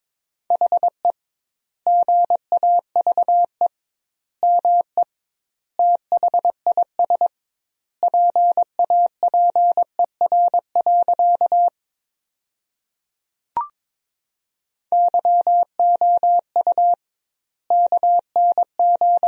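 Morse code sent at 22 words per minute: a steady mid-pitched tone keyed into quick dots and dashes spelling a sentence built from the top 500 words, with doubled word spacing giving wide gaps between words, plus one brief click near the middle.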